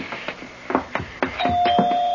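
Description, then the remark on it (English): A run of soft, evenly spaced thumps gives way to a steady, sustained electric doorbell ring at the front door late at night that holds through the end, moderately loud, with no voices. “The front door at this hour?”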